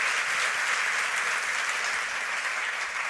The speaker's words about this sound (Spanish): Ok, miren, ¿por qué no le dan un fuerte? Quédate allí, un fuerte, fuerte, fuerte, fuerte aplauso.